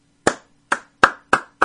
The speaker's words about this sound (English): There, a quick little clap. That's the best I can do since I'm here.